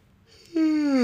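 A loud, exaggerated cartoonish yawn: a breathy intake swells into a strong voiced groan that slides steadily downward in pitch, with no talking.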